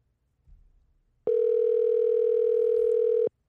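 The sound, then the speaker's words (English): A steady electronic phone tone sounds once for about two seconds, a single ring of an outgoing call, clear, after a faint brief rustle and near silence. “Pick up the phone.”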